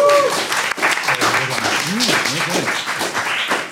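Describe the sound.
A quiz show audience applauds after a round, with a steady, dense patter of clapping, while voices cheer and call out over it throughout.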